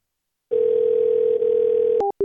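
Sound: telephone call tone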